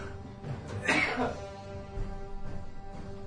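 A sick old man coughs once or twice, a short harsh burst that fades to quiet with a low steady hum in the background.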